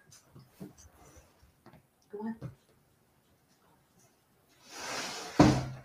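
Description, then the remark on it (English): A dog shuffles right next to a person's foot, making a burst of scuffling and rustling that ends in a sharp thump, after some faint, quiet voice sounds. “Sorry, my dog is right here next to my foot.”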